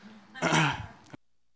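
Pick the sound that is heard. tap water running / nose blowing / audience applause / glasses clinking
nose blowing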